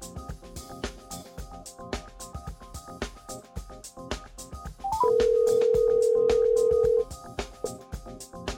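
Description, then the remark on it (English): A phone call to a guest in Pensacola, Florida rings out: quick dial blips, then one loud, steady ringback tone lasting about two seconds, sounding over a busy music bed that plays throughout. “So we're going to go to the phone right now and get him on the line here.”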